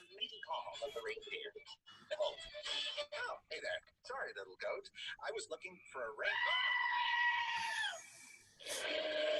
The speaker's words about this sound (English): It's a screaming goat.